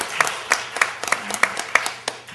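A short round of applause: steady, evenly spaced claps about three per second, crisp and fairly loud, from what sounds like a small group, with no talking over it.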